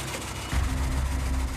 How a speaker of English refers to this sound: You can see how badly it's shaking. It's, right. You can hear the skip coming out of the exhaust system.